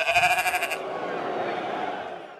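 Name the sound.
sheep bleating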